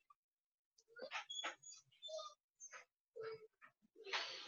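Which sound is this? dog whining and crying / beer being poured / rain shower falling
dog whining and crying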